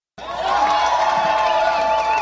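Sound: concert crowd cheering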